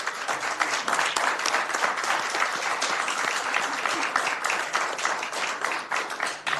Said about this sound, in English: And I want to thank you all and congratulate you for being part of the City of Sacramento Youth Workforce Development Programming. So can we please give them a round of applause?